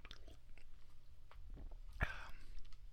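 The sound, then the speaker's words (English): Quiet slurps and wet mouth sounds of someone sipping beer, with a sharp click partway through followed by a brief swallow. No one speaks. “Wow, I gotta take another sip of this.”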